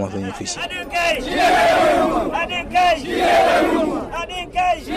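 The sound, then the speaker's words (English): A northern commercial motorcyclist in Lagos, Nigeria, shouts loudly to condemn the ban on motorcycle taxis, in strained, drawn-out bursts, his raised voice rising and falling over a steady murmur of crowd noise, pausing briefly between cries. “This northern commercial motorcyclist in Lagos shouts out to condemn the ban on motorcycle taxis.”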